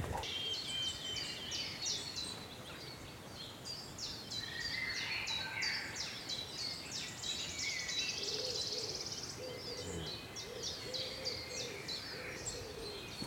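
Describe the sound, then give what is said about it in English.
A wood warbler sings among other woodland birds, repeated high ticking notes running into a shimmering trill, with soft low hooting calls in the background. “Lovely wood warbler.”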